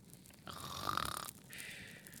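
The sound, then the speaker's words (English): A person makes a mock snore, a raspy, throaty rumble drawn out for about a second, followed by a quieter breathy exhale. It sounds fairly loud, with no talking. “The red man is just like snoring and blissfully.”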